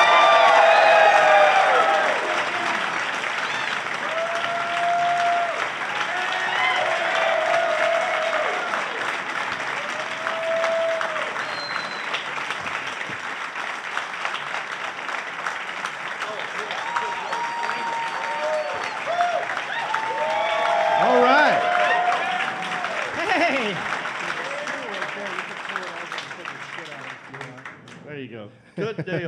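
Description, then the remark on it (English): A crowd at the Queen City Comedy Festival in Charlotte claps loudly and steadily for nearly half a minute as four comedians are introduced, mixed with shouted cheers and high whistles that rise and fall, before the applause thins out at the end. “Please give it up for John Reap, Topher Riddle, Joe Pettis, and Trey Gallion!”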